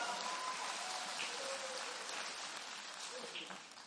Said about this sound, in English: If you're excited about it, go and give God a hand clap of praise real quick.